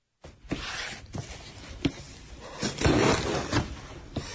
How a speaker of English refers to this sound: Police Chief James Kerr is opening the first box from a huge pile in a side room at the police station.